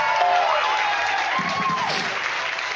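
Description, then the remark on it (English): An audience claps steadily in a dense, continuous wash of applause, with a few whistles and cheers rising through it, holding at an even loudness throughout. “Okay, stop clapping. All right. That was a long clap.”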